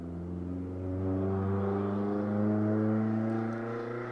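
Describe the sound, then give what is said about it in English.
A loud car engine revs steadily as the car goes fast, its harmonic roar swelling slightly in the middle and holding strong for several seconds with no voices. “I think it was a car going very loud.”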